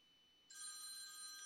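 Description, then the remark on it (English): A phone being used as a camera starts ringing abruptly after a faint steady tone, a bright electronic trill with layered high pitches, fairly loud with no voices. “I just realized that this camera right here is the camera that's ringing.”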